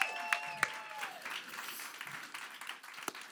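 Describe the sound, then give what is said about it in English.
An audience at Bold Church breaks into dense, steady applause for Jesus, many hands clapping at once with a few sharp louder claps and a brief high whistle-like cheer at the start, continuing without any talk. “Can we just give Jesus a round of applause?”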